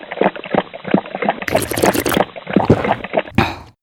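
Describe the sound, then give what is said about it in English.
Dasani bottled water is poured into a mouth, making a steady, uneven gurgling and splashing for a few seconds, with brief bursts of brighter hiss and a short pause near the end. No one speaks. “I'm just going to pour this into my mouth.”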